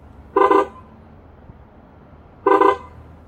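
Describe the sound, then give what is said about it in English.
Two brief, bright toots from the courtesy horn of a quiet Volt electric car, spaced about two seconds apart, used to get the attention of people on the sidewalk, over a low, steady background hum, with no talking. “And it's just three short little honks that's supposed to get the attention of people on the sidewalk because the car is so quiet, it's an electric car.”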